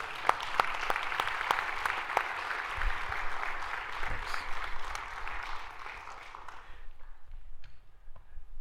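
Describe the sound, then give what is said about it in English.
A round of applause from a group, dense crackling claps with a few sharp louder claps standing out, steady for several seconds before thinning out and fading to scattered taps at the end. “Well, let's give them a round of applause, okay?”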